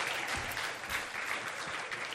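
A steady round of applause from a group for a speaker, dense crackling claps filling the whole clip at an even, moderately loud level with no voices.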